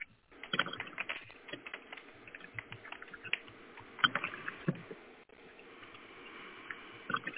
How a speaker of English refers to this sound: I'm going to do some an I Ching reading for you, so if you give me just a second, I'm going to flip these coins real quick. Okay.